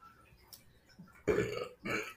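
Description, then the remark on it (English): A loud burp erupts after a quiet moment, a long gurgling belch followed by a second shorter one. “That was like the worst burp I've ever experienced.”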